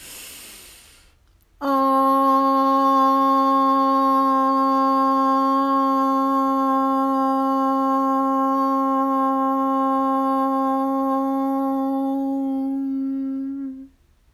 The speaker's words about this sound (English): We'll take a deep breath in, and we'll end with the tone OM. So hands on your body. Breathe in.